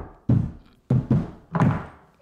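Heavy knocking on the door of someone's home while going door to door at midnight: five dull, booming thuds in an uneven pattern, a pair close together in the middle, each ringing out briefly before the next. No voices.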